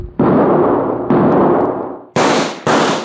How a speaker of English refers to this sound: Tad, I knocked him smack out of his saddle. Nice shooting, Cherokee.